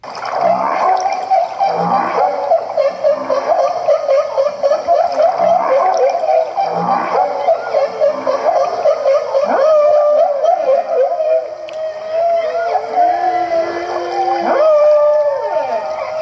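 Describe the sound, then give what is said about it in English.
Humpback whales chatting in social calls, with a brief piece of song: overlapping moans and wavering tones sliding up and down, with a few sharp rising whoops, continuous and fairly loud with a hollow underwater quality. “But mostly, it doesn't sound like the songs you usually think of humpback whales as making, because these are chatting.”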